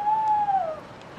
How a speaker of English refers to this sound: Sounds like an owl or something. Yeah, maybe.